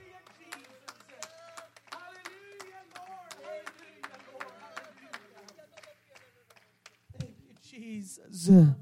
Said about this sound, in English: In Jesus' name, would you clap your hands one more time to the Lord?